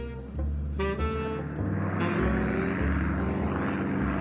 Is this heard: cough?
no